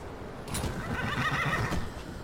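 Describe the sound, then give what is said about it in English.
A horse lets out a single loud whinny lasting about two seconds, with a faint hoof clop and some background noise beneath it. “Just told the horse to wait.”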